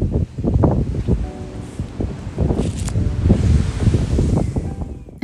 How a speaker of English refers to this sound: Oh, just listen to the ocean though.